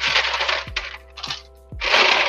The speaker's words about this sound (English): Well, on that note, pause for the sound of rattling ice trays.